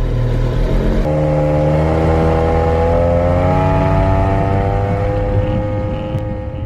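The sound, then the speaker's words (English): A boat engine revs loudly and steadily, its droning pitch climbing gradually as it accelerates, with no voices over it. “Oh, let me on the boat.”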